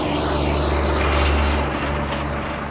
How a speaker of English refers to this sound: Loud truck.